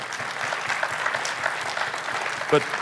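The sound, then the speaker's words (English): An audience claps steadily in praise of God, a dense wash of many hands at an even loudness throughout, with a brief louder spike near the end. “But as we clap, I know we can praise God for the present”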